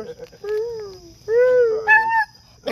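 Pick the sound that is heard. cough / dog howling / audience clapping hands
dog howling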